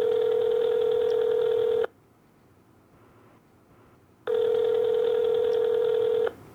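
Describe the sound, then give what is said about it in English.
Two long, steady electronic telephone tones sound on a call line as a call is placed to the speaker's daughter, each lasting about two seconds and separated by a silent gap. They are loud and clear, with no talking. “Let's get my daughter on the phone and let's see what she has to say today.”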